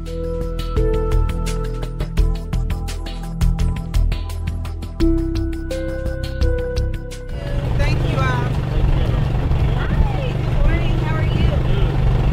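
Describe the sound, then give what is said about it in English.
Music plays at first, then the steady low rumble of an idling mobile market truck engine takes over, droning continuously beneath several people chattering as community members pick up fresh produce and meals. “The hum of the mobile market truck could not quiet the excitement and gratitude of community members as they picked up fresh produce and meals provided by local restaurants.”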